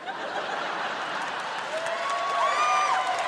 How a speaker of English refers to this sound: All of Portland came out to applaud.